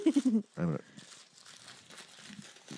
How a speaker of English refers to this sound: I crumpled too quickly.